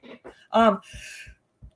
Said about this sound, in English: Bless you. Thank you, excuse me.